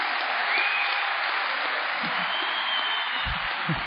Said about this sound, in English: I'm telling you, and that's where I'd like to hear the applause.